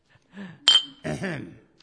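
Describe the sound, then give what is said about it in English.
A single bright clink of glasses touching in a toast to Sherlock Holmes, leaving a short high ringing tone, with voices murmuring just before and after it. “Shall I pour us another drink, then?”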